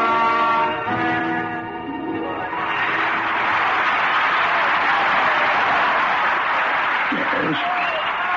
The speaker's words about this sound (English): Oh, just listen to that applause.